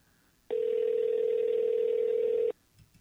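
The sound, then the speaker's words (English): A telephone dial tone as a call is being placed: one steady, mid-pitched electronic hum holding for about two seconds, then cutting off abruptly, with only faint rustles after and no voices. “Let me just dial him.”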